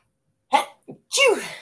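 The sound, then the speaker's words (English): A loud sneeze in stages: a sharp breathy intake, a brief pause with a small catch, then a forceful burst that trails off. No talking. “Sorry, I couldn't answer your question because I had a sneeze was right there.”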